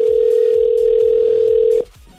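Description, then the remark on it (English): A telephone tone hums steadily and loudly for almost two seconds as a call is placed to a contest entrant, then cuts off abruptly, leaving a faint background hiss. No one speaks. “But the most important thing is we have to call you and you need to pick up the phone.”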